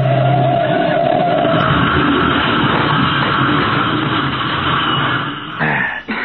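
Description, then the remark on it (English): A car engine roars loudly and steadily, revving throughout, before a sudden jolting crash near the end as the car hits a curb, followed by a brief clattering and a dip in the noise. “now we're going to have the same kind of accident Anderson had. Okay, Patsy, here's the curb. Hold tight.”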